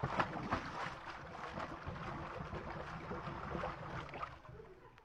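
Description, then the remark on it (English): A new Cadillac car plunges into a swimming pool with a heavy splash, followed by several seconds of loud churning and sloshing that gradually settles, with no voices present. “Right into the water. Don't worry. It's a new Cadillac.”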